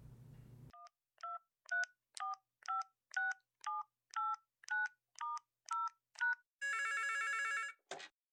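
A brief low tone gives way to about eleven quick, evenly spaced touch-tone beeps as a number is keyed in, followed by a single loud electronic ring and a click. There is no talking.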